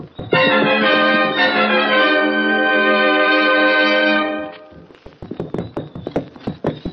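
horse hooves clip-clopping

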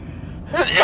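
sneeze

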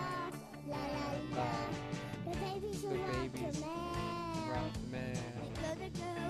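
cat meowing

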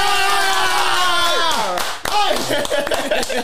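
clapping and cheering

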